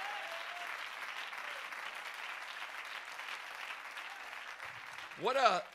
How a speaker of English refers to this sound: Clap your hands if you believe that.